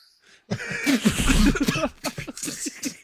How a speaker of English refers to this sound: Oh, he coughed out a lung. You heard that too, right?